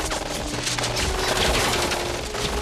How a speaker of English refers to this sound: Oh, Tuco's just shot six dudes with one gun.